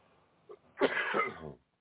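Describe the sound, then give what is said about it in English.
A single loud cough bursts out after a brief catch of breath, harsh and raspy, trailing off over about a second with no one speaking. “I'm still coughing.”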